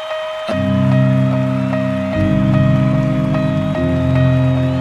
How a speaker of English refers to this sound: The sound of the rain needs no translation.